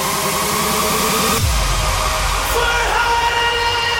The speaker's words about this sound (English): Hands up. Bring that roar.